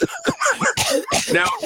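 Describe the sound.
A voice imitates a wet, phlegmy baby cough, a quick run of several raspy, gurgling coughs in close succession, fairly loud.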